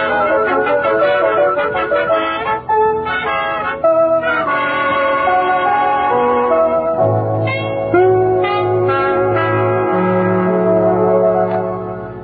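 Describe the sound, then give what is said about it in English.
A doorbell rings loudly and continuously, its bright chiming tones overlapping and sustaining for several seconds with no voices present. “let's ring Mr. Edwards' bell first.”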